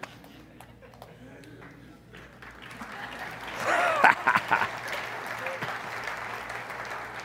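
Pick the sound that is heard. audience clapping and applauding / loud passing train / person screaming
audience clapping and applauding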